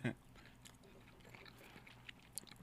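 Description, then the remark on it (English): Wet biting and chewing of a slimy steak cooked in an infrared oven, with a brief loud bite at the start followed by quiet, squelchy mouth sounds and a few small clicks. “It's slimy. I didn't really chew it. I kind of just swallowed it, so I need to take another bite.”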